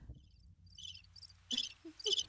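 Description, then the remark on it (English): Crickets chirp in short, repeated bursts, growing louder toward the end, with a low steady hum underneath and no voices. “Crickets. These crickets.”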